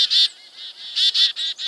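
A chickadee's urgent alarm call, the kind given for a small, agile pygmy owl: a rapid, insistent run of about eight harsh, buzzy notes, fairly loud, with no other sounds around it.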